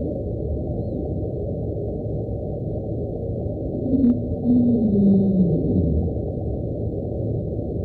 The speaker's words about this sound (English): Speculation on this noise is that it's an iceberg grinding on the ocean floor.